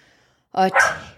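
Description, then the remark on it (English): A dog gives two quick, loud barks, back to back, after a brief moment of near silence. “We got … hacking in the microphone and Myers barking.”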